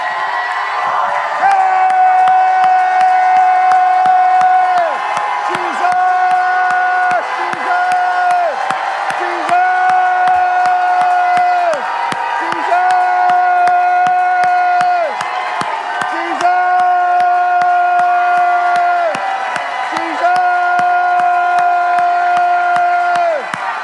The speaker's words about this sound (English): So open your mouths and let's shout unto the Lord with a sound of triumph. And let's just release praise.